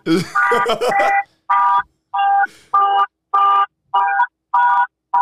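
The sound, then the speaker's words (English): A truck's car alarm goes off after the button was pressed without the key, blaring loud, evenly spaced tonal honks, about eight in a steady rhythm, after a brief burst of voice at the start. “I hit the button and I didn't have the key.”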